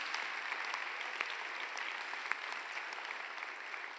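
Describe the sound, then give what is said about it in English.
A steady wash of audience applause for the University of Sydney for hosting the event: many hands clapping densely and evenly at a moderate level, with a few sharper individual claps standing out, sustained throughout without any talking. “Can we just get one big round of applause for them for putting this on?”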